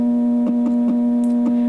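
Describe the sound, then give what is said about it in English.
NVDA screen reader progress beeps sound while files are copied to a disk: a steady, low electronic tone holds throughout, with faint irregular clicks ticking over it. No one speaks. “NVDA progress beeps telling us what's going on there.”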